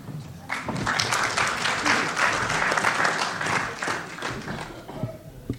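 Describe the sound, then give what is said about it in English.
An audience applauds a speaker before he begins his talk, steadily for several seconds, a dense, even wash of many hands clapping at once, holding a fairly loud level before easing slightly toward the end. “My word, applause before I even start.”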